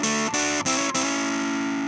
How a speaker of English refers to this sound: As a metalhead, I had to include this effect. Having distortion or fuzz on your acoustic guitar signal seems a little odd, but it can add that right amount of dirt, that right amount of grit